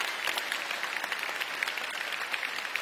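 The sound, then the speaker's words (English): A church audience applauds steadily after a baptism, a dense crackle of many hands clapping at an even, sustained level with no voices rising above it. “Church, let's give him a round of applause.”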